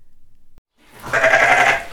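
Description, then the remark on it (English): After a moment of near silence and a faint click, a single sheep on a moonlit hill, startled as someone lands, lets out one loud, wavering bleat lasting about a second. “I startle one sheep as I land.”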